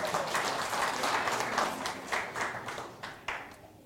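A crowd of people applauds, a dense wash of overlapping claps that stays steady for a few seconds before thinning out toward the end.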